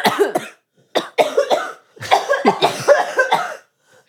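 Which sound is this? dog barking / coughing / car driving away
coughing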